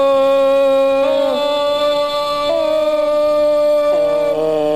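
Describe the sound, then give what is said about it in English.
A voice imitates a loud, blaring honk, holding one long, brassy tone for several seconds with a few abrupt shifts in pitch and no words spoken. “What you got to do is the honk.”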